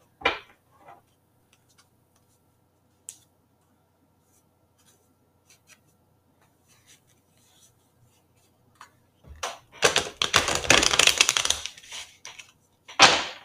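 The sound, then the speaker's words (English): Scattered soft clicks and taps, then a dense, fluttering burst of rapid papery snaps lasting a couple of seconds, like a riffle shuffle of a deck of cards, followed by one more short flurry, fairly loud. “I'm not a fast shuffler, y'all.”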